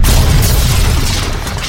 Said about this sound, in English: Don't worry about the airplanes flying over. You'll only hear them every 5 minutes.